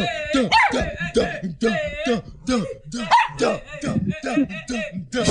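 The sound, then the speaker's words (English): A dog yips and barks in quick, excited bursts as several voices chant at it and microphones are pushed at it; the high-pitched calls repeat steadily while the voices chant and talk over it. “By the way, there's a dog being chanted at and bombarded with microphones.”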